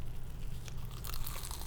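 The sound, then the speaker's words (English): A big bite into a flaky homemade croissant taken close to the mic: a burst of crisp, crackly crunching that builds after a quiet low hum, crinkling like flaky layers breaking apart, with no voices. “I took a really big bite. Can y'all hear that?”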